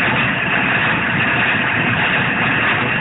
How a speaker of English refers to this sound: Engine ahead of us again. They are quite pacey. Again, about that 400, 500 metres ahead.